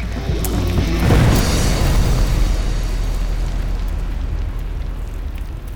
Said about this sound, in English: And I would say we were maybe 15 or 20 seconds into doing this when the explosion hit. He had ignited the dynamite and the powder. And the explosion just reverberated through that canyon. It seemed like it echoed forever and ever and ever.